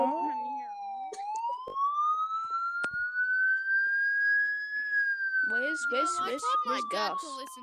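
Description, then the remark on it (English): A loud siren of arriving police and ambulances wails in one long, slow rise and fall, with people talking briefly over it at the start and again near the end. “The police and ambulances are now here.”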